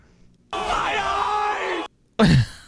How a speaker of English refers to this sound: And it's just a guy screaming my eyes. From SpongeBob. Just whenever we see something that we don't like.